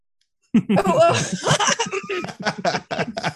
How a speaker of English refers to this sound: I mean, coughing.